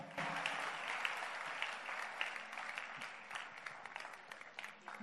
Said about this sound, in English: Are you clapping your hands for Jesus Christ?